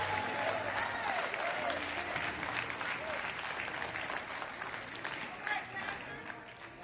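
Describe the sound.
A church audience gives a clap offering of praise to the Lord, clapping steadily for several seconds, a dense, bright wash of many hands with voices mixed in, holding strong before easing slightly toward the end.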